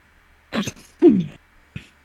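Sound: sneeze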